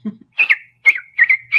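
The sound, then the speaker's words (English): A short low sound, then four quick high whistled chirps in an uneven rhythm, fairly loud, a person imitating the chirping call of the Bakush, an ape-like forest creature. “They chirp.”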